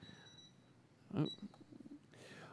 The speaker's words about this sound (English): There's a timer up here now. That's new. It's like, Ryan, get off the stage exactly when the timer beeps. It could have been set for longer.